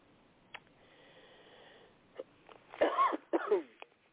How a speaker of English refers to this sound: Excuse me for coughing.